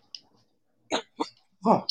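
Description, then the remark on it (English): A short series of coughs, three rough, breathy bursts with the last one longest and loudest, followed by a quick sharp catch of breath, with no talking. “I just had to cough.”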